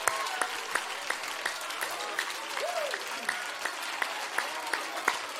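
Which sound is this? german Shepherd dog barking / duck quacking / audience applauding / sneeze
audience applauding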